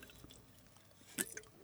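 A quiet sip of water: two brief, soft wet slurping sounds in quick succession near the end, with no talking.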